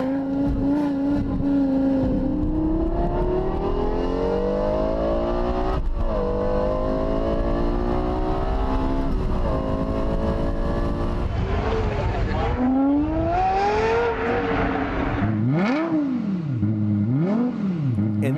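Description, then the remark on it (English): A Lexus LFA sports car engine screams up through the gears in loud, rising whines, then finishes with several sharp throttle blips that rise and fall quickly, continuous, with no talking. “Let's take a listen here. This is the Lexus LFA.”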